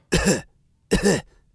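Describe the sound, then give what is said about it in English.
A voice imitates a sick boy's harsh, throaty cough twice in a row, each burst short and loud with a brief pause between, with no talking. “But what was worse than anything was this cough. Every 5 seconds.”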